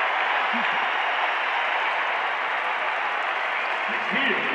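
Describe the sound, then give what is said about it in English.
A basketball arena crowd applauds Nickeil Alexander-Walker after his steal and foul drawn, in a loud, unbroken wash of clapping and cheering voices that holds steady for several seconds, with a few faint voices rising briefly underneath. “And maybe the most important part, and listen to the crowd acknowledging Nickeil Alexander-Walker.”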